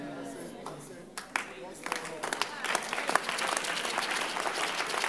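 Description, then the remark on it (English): An audience breaks into applause during a sermon, starting with a few scattered claps and swelling into dense, steady clapping that grows louder over several seconds, with murmuring voices underneath. “It's not enough to clap.”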